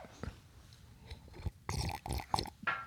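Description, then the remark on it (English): Wet mouth noises of someone slurping coffee, a few short noisy sips in quick succession, fairly loud and with no talking. “I just slurped the coffee for dramatic effect.”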